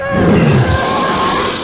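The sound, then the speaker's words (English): Four Star Destroyers roar low overhead in a barrel roll formation above a plaza parade, a loud, sustained rush, a deep rumbling growl at the start giving way to a broad, steady hiss with a faint high whine, with no voices. “They all gaze skyward as the 4 gleaming Star Destroyers scream low overhead in an impressive barrel roll formation.”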